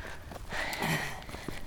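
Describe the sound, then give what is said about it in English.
Quick, rhythmic footsteps of someone power walking on a trail, moderately loud, with faint breathing mixed in and no talking. “I'm counting your steps.”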